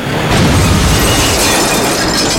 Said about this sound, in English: The BMW sailed through the tinted glass facade of the Jacob Javits Center.